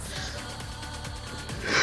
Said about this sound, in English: That's a good burp.